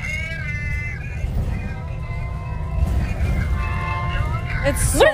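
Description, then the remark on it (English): A siren wails in steady, high-pitched tones over a constant low rumble of traffic, then ends with a sharp rising sweep. “Do you guys hear the sirens?”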